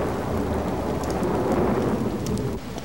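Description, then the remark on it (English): Heavy rain pours steadily with a deep, rolling rumble of thunder running beneath it, a dense, continuous storm wash that eases slightly near the end. No voices are heard. “Just shivering and chilled to the bone, you make me wish I was outside enjoying the storm.”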